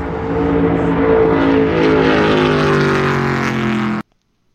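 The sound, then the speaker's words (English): A race car screams past at about 175 mph on a speedway track, its loud engine whine sliding steadily lower in pitch as it goes by before the sound cuts off abruptly. No voices. “Really, this is what 175 miles an hour in a car sounds like as someone else is standing on the track.”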